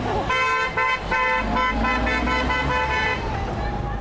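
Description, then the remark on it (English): Busy roadside traffic in Auckland beside a teachers' roadside protest meeting, with several car horns honking in repeated bursts, a steady engine rumble underneath, and faint voices in the mix. “Now, all those teachers were at roadside protest meetings, grabbed interviews in a way against a background of traffic noise.”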